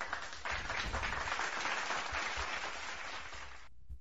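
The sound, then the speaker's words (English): A dense round of applause from many hands, steady and loud for about three and a half seconds before cutting off abruptly. “Yeah, let's give that a round of applause while we're at it.”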